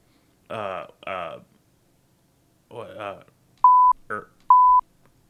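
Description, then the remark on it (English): Two short censor bleeps, steady mid-pitched tones, loud and abrupt, cut in after someone talks, with a brief burst of speech squeezed between them. “That's that beep come in handy.”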